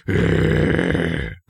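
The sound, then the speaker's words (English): A man imitates a Rottweiler's growl with a loud, sustained, gravelly rumble lasting over a second, then breaks off briefly before a short grunt begins again. “Oh, you sound like a Rottweiler.”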